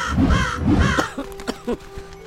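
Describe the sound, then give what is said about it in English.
A raven gives two loud, harsh caws in quick succession, followed by a few soft clicks and faint rustling sounds. “The sacred raven of Olympus has retrieved the amulet for safekeeping!”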